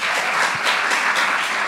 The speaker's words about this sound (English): I was telling my producer, Brett, please give a round of applause to producer Brett.